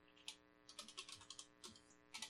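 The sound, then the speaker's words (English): Rapid clicking of keys on a computer keyboard, a quick irregular burst of a dozen or so taps, with a faint steady hum in the background. “I can't type on this.”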